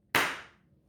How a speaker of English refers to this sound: You don't have to sync it after with the claps. All the cameras are going to be synced.